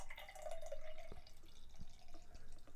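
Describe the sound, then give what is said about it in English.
Pepsi is poured into a glass to make pilk, in a steady, continuous stream, with a gurgling, slightly rising tone early on and soft splashing and fizz throughout. No one speaks. “I want to film what it looks like when the Pepsi goes in the glass.”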